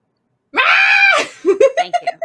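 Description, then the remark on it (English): A male cat yells at its owner, a loud, drawn-out yowl lasting under a second, followed by a quick run of shorter, choppy vocal bursts. “So much so, like, I mean, I'm sure you heard him come in and yell at me, but so much so that on my Twitch channel, I have an emote of him screaming, so whenever anyone hears him in the background,”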